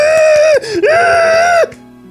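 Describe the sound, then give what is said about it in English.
The creature Boma, excited after Han says something to it, screeches loudly in two drawn-out, shrill cries, its pitch sagging briefly between them before cutting off, with no talking around it. “Oh, Captain Valor grins and Han says something to Boma, who becomes excited and screeches loudly.”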